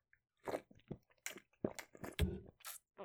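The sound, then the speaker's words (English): Quiet sips of water: a few wet slurps and gulping swallows spread over a few seconds, with small mouth noises in between and no talking. “I have a drink of water that I can.”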